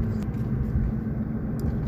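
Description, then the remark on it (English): A pickup truck with its check engine light on, hauling a trailer near North Battleford, produces a steady, loud low engine rumble and road drone throughout, continuous and even, with no one speaking. “I have a fucking check engine light that's on because I'm pulling a trailer.”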